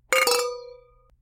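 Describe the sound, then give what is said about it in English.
Wine glasses clink together in a toast, two quick taps that leave a bright, ringing tone fading out over about a second, with no voices. “So I think we should cheers. I am so ready to drink wine.”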